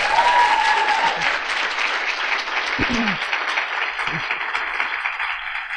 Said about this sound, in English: We will bring this podcast to a conclusion as the women and men in the room stand to applaud you, Marianne Williamson.